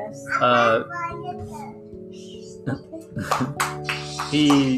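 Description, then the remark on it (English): A toddler boy babbles and vocalizes in several short, sing-song bursts with a few higher squeals, moderately loud, over a faint steady hum. “That's … right there. Whatever that means.”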